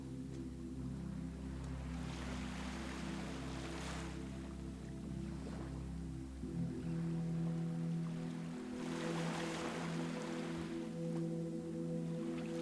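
A kayak pushed off a beach rides a small swell back out into open ocean water as the tide turns, a steady low droning hum running throughout while broad, rushing washes of swell surge up and fade at a slow, uneven rhythm. No one speaks.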